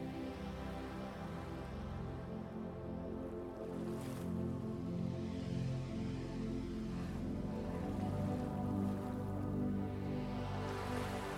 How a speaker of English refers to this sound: Just enjoy the sound of the waves as you get settled and close your eyes. Sounds of nature and the flowing of water reminds us of the cycles of life.